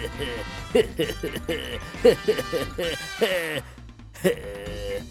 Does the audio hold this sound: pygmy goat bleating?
yes